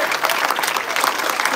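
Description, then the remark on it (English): An audience at a church service claps together in Jesus' name in a dense, steady burst of applause, many hands overlapping into a loud, continuous crackle with no voices standing out. “One more time, clap your hands together in Jesus' name.”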